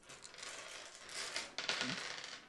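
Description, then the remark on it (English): Four dice are rolled in a tabletop game, rattling and tumbling across the tabletop in a brisk clatter of small hard knocks lasting a couple of seconds, with no voices. “Now I'm going to roll some magic.”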